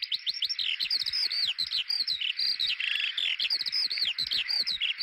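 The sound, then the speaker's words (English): A skylark singing high in the sky pours out a continuous, rapid stream of bright warbling and chirping notes, unbroken and lively, with no talking over it. “From their vantage point up in the sky, where they ascend as much as 100 metres up, these small birds pour down a song which can last for as long as 28 minutes, continuously rolling out new syllables and complex combinations of sound”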